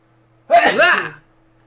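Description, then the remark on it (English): A single sneeze, fairly loud, a sharp burst of breath with a voiced edge lasting under a second, set against near silence. “Excuse me. Bless you.”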